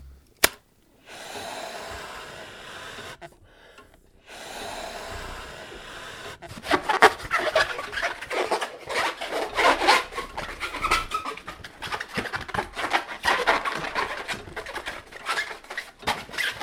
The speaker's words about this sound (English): And I can also make a model of any animal in that zoo out of balloons. I'm sorry, balloons? Yeah, you know, balloon animals. Name any animal not so. A giraffe. Easy.